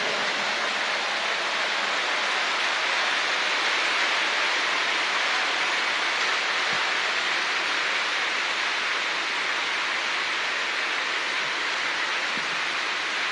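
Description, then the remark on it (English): A crowd claps loudly with full hands, using all five fingers, many overlapping claps merging into a dense, steady roar that holds evenly throughout, with no voices. “Four fingers will produce better sound. And five fingers.”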